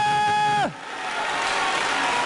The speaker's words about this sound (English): So can somebody in this room, can you stand up right now and give a cheer for God? I mean, can you cheer for God? Hallelujah!